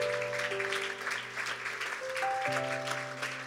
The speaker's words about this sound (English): Why don't we give the Lord a hand clap of praise this evening?